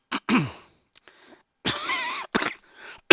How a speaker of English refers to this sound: see, there's that cough.